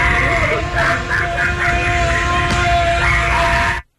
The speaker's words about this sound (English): It sounds like two people that are having a scream off. Yeah. Row 7 and row 9 going back and forth.